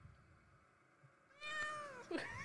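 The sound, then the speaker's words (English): A cat meows twice in quick succession, a drawn-out tonal cry followed by a sharper, louder one, clear over a quiet background with no talking. “That's bitch cat.”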